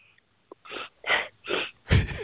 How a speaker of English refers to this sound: This is my favorite part when he asked her to what's it smell like? And you can hear her taking a sniff of the air.